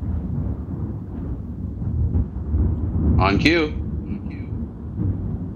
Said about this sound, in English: You're going to hear some thunder right away. Are you seeing the lightning going off over my show?